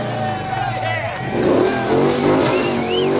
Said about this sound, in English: He got behind the wheel of the car and immediately started revving it up. I'm going to rev the engine before I give it to him.